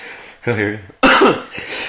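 A short hummed or sung note is cut off by a single loud, harsh cough, followed by a brief breathy tail.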